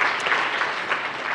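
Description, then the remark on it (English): A crowd claps steadily, applauding the selection of the site for the rover: a dense wash of many hands at a fairly even loudness, with no voices rising above it during the brief stretch. “I think that's an unbelievable accolade, and I would welcome another round of applause for that.”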